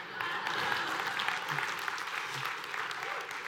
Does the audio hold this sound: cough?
no